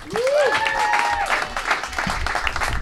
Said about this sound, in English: You guys, give a round of applause for the very funny Zach Toscani.